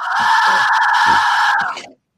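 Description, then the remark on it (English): A loud, piercing Mayan death whistle shriek: a single harsh, scream-like blast held steady for nearly two seconds with a rough, airy rasp before cutting off abruptly into silence. “That's the Mayan death whistle.”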